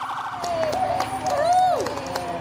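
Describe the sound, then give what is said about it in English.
A wailing emergency vehicle siren holds a steady tone, then sweeps down near the end, over crowd noise and scattered voices outdoors, during a birthday parade for a woman turning 75. “And so did Grandma, slightly embarrassed by all the attention, but thrilled at the lights and sirens nonetheless.”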